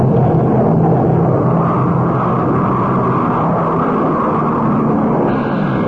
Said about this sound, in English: Goes the plane back to England.